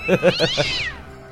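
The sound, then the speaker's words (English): A cat lets out a single drawn-out, whiny meow that rises then slides downward and fades, heard clear with no one talking. “A little kitty cat. That he could strangle.”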